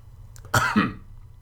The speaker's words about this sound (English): Don't cough. It's rude.